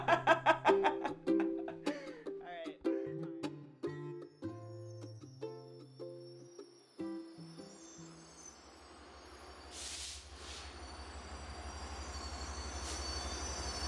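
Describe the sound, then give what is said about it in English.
A short plucked melody plays, then gives way to a train pulling into a station in Los Angeles at 9 p.m. on October 21, 2019: a steady low rumble with bright, squealing wheel and brake screeches rising over it near the end. “It's 9 o'clock at night on October 21st, 2019, and Benjamin is arriving at a train station in Los Angeles.”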